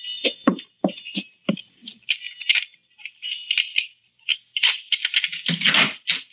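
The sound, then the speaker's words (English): A locked door's lock being picked with a hairpin: thin metallic scraping and jiggling punctuated by sharp little clicks and rattles, irregular and fairly quiet, with no voices. “Where did you learn how to pick a lock?”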